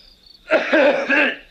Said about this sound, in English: He's just coughing. He's like, yeah, it's kind of harsh.